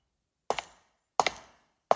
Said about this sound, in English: Oh, some footsteps.